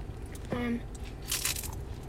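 A crisp crunch of someone biting into food, followed by a brief burst of crackly chewing noise, with a short vocal sound in between and no clear speech.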